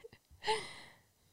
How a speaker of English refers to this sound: Oh, he's snoring, guys, if you can hear him.